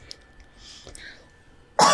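After near silence, a single loud, abrupt sneeze bursts out right at the end, sharp and breathy.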